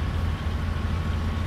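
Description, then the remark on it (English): A lumber yard truck's engine rumbles steadily, a deep, continuous low drone with no pauses or voices, like a big rig idling in place. “Yeah, me and my R&C lumber truck going all the way, the lumber yard truck going all the way to D.C.”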